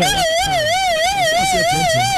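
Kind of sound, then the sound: vehicle, ambulance siren passing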